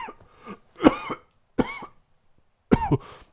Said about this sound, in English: Yeah, you know that shit gotta be some fire when you smoking on the wood and you coughing.